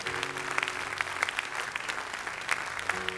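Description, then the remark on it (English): An audience clapping their hands to give the Lord a big hand clap, in steady, sustained applause, a dense patter of many overlapping claps with a few sharper individual hits standing out, fairly loud and without any talking. “Come on, give the Lord a big hand clap.”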